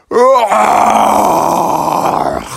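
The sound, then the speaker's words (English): A person imitates a bear's roaring yawn: a loud, drawn-out growling vocalization that starts with a rising groan and holds for about two seconds before trailing off. “And that's how a bear yawns, you know, it's kind of like a roar.”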